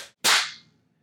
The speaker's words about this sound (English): That was bomb. That was such a good clap.